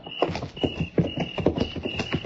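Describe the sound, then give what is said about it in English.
Horses' hooves clip-clop in a steady rhythm, with several sharp hoofbeats spaced about half a second apart and a faint high hiss running underneath. “All right, we'll leave the horses here.”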